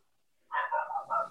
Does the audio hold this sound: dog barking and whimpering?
yes